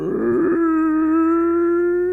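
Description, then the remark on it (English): A voice imitates the heavy front door of a manor creaking open as a sound effect for a game: a rough, gravelly start settles into one long, steady, mid-pitched groan that holds loud for about two seconds, with no other sounds. “I've been doing a door opening for a lot of games.”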